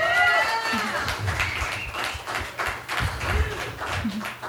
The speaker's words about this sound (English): Guys, give them one round of applause.